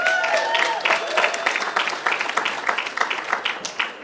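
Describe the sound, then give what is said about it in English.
An audience breaks into steady applause to welcome the next speaker at an event, many hands clapping in a dense, fairly loud patter that thins slightly toward the end, with a few faint whistles early on. “Give her applause.”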